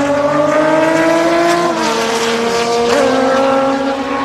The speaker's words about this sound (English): Race cars behind you.